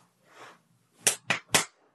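Three sharp, loud knocks on a door in quick, even succession, preceded by a brief soft rustle.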